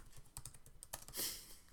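Quick, uneven clicks of keys being typed on a computer keyboard, with a brief burst of harder rapid tapping near the end; no voices.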